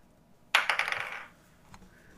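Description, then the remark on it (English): Dice are rolled in a game for a water vehicle roll, coming to 18 with a plus 5 added; they clatter across a hard surface in a quick burst of sharp, bright rattling clicks that settle and fade over about a second, followed by a faint final tap. “You rolled an 18, or was that adding your plus 5?”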